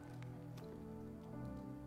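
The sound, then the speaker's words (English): Someone takes a few wet gulps of water, soft squishy swallowing sounds with a low, muffled hum underneath and no talking. “I'm going to swallow water and I got 2 more minutes, all right?”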